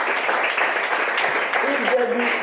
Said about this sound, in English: Oh, how many times I said, you want to clap, just put your hands together for Jesus. Amen.